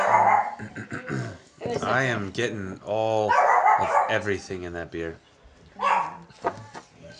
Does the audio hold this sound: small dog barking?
yes